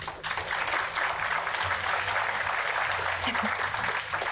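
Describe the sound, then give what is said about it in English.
A panel discussion audience claps in a steady, dense wash of applause that holds at an even loudness for a few seconds, with no voices rising above it. “I'll let the applause get out of the way because I know I won't get any.”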